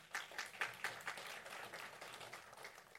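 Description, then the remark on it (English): A church audience breaks into spontaneous applause, a dense patter of many hands clapping at once, with a few sharper claps standing out early before it settles into steady, moderate clapping. “By the way, little factoid, whatever gets spontaneous applause in a church is considered a value.”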